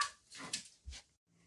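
A dog gives a couple of short, high whimpering yelps followed by a low bark, moderately loud, with quiet background after.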